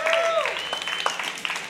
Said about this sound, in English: I see that clap